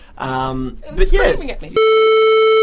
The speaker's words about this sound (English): Having an alarm situation here, listeners. Do not be alarmed.